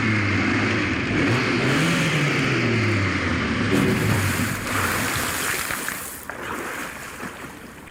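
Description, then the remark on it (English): A car's engine drones and revs loudly, then gives way to a steady rushing wash of water as the car drives into water and splashes through it. The car is a British-built land-to-sea vehicle with air intake valves. “Yes, we're going in the water.”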